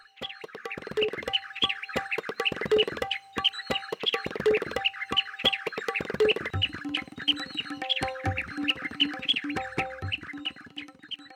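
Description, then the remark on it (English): A white-browed bulbul sings a bright, rapid run of chattering warbles nonstop, fairly loud, with lower, rounder notes repeating in a steady rhythm about every two seconds. “For example, whenever I listen to the white-browed bulbul, it always reminds me of a tabla.”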